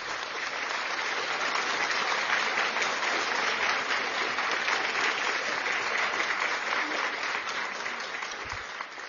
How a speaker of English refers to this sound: Give a clap offering unto the Lord.